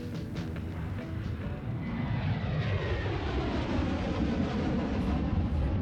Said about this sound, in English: Thursday, the 5th of March, 1959, somewhere over the Atlantic Ocean. Jack and his uncle Hubert are aboard a new Boeing 707 operated by American Airlines. Their first time experience a jet engine powered aircraft, allowing them to fly directly